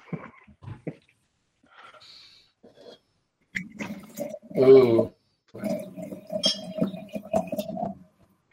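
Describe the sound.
Water pours steadily into a glass with a gurgling, bubbly rush and a few light clinks, fairly loud, while people murmur and exclaim.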